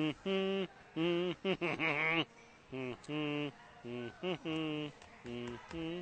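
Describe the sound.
Someone hums a dramatic film march tune, voicing a series of strong, sustained notes in steady rhythmic phrases with short breaks between them, with no other sounds around.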